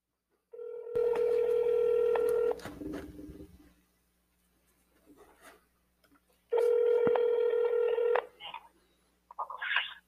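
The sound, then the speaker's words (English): A phone ringback tone sounds twice as a call is placed to a guest from a mobile phone, each a loud, steady two-second buzz, with a few quiet seconds and faint clicks and shuffling between the rings. “Oh, there it's ringing.”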